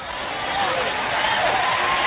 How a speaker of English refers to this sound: Oh, you clap your hands now. But let me have a wreck. You clap your hands.